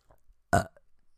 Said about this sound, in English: See, I keep burping, but I'm doing it off the mic because I'm respectful. Sorry about that.